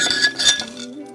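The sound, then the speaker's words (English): A glass clinks a few times with bright, ringing high tones as it is lifted for a drink, the chime fading into a short quiet tail. “I'm going to take a sip of drink.”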